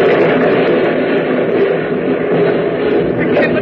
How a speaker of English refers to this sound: It's getting louder and louder. This is the whole world trembling.